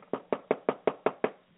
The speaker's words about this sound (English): That's right. Knock on your neighbor's door. I know it's, you know, evening time and they just got home from work. I don't care. Okay, I want you to knock on the door.